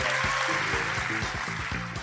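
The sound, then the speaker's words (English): An audience at the Pleasance Grand applauds in a dense, steady wash of clapping that holds for the whole two seconds, with a rhythmic, bass-heavy musical pulse running underneath. “Anyway, big round of applause for all of the hard work for the people at the Pleasance Grand.”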